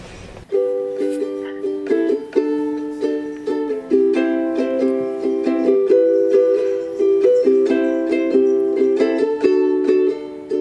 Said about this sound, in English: I found that one of the best ways that I can process the whole transition to online learning and teaching is to write a song. So I wrote a song. I'd like to share that with you guys now. Here we go.